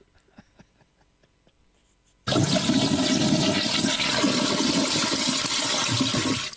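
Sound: toilet flush sound effect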